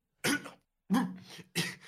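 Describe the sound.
Three harsh, sputtering coughs in quick succession, fairly loud, from someone choking on a mouthful of pancakes, with brief silences between bursts and no talking.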